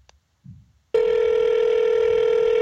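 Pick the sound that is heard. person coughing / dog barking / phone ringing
phone ringing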